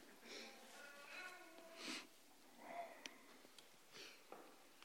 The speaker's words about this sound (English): You who's sniffling there on the fourth row, won't you come up here? You got me sniffling, not that.